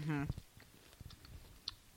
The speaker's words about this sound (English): That didn't sound like it took a lot of effort. It didn't. You guys, this is really weird. I'm sorry for the crunching that you have to endure right now, but it's like... It's ASMR.